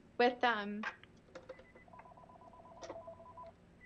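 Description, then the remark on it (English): A mobile phone rings with a quiet electronic ringtone, steady repeating beeping tones in the background, after a brief burst of voice at the start. “Sorry, my phone's ringing.”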